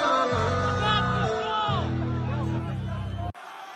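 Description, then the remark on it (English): A large concert crowd chants "Stop the show!" over and over in rhythmic unison, loud and echoing, with steady low music or bass thumping beneath the massed voices. “that was the crowd yelling for … to stop the show”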